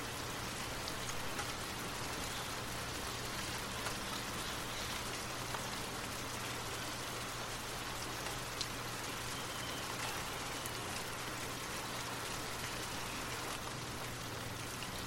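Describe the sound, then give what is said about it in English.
Steady rain patters on a hard surface, a dense, even hiss of countless drops with a faint low hum beneath, continuous and unchanging throughout, with no voices. “Continue to focus on your breath and the sound of the rain as you drift off to sleep.”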